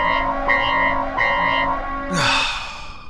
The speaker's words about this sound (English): I swear it's like the 11th time. Must be the 11th time that I've heard that alarm. I'm guessing the ship's too heavy in three categories.